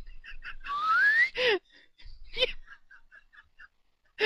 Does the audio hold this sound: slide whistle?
yes